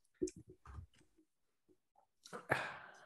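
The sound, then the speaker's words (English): A quick run of sharp clicks as computer buttons are clicked, followed by a pause and then a louder, rustly burst of clicking near the end, with no talking. “Move to trash. Clicking buttons.”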